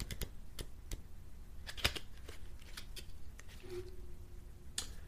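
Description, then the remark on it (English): A manga-themed card deck being split and shuffled for a card reading, with crisp irregular snaps and soft papery slides over about five seconds, with no talking. “When I split the deck to get ready to do the shuffle, Judgment came out, if you can see it, and the Angel.”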